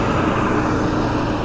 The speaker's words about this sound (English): This truck just passed and this guy just, like, stared at me the whole time, you know?